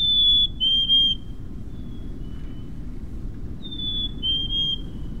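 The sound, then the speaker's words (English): A black-capped chickadee sings its clear whistled song twice, each a pure two-note phrase that steps slightly down in pitch, over a steady low rumble. “Even in the ruthless grip of winter, when the snow crunches beneath your boots, an ember glows in the lilt of a black-capped chickadee.”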